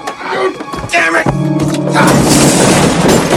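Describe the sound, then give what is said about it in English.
A television set being carried downstairs to a basement during a quarrel smashes with a heavy boom, followed by a sustained harsh burst of crashing, rattling debris, while a voice yells over the first part of the impact. “Nice going, asshole! You smashed it! You were taking it downstairs!”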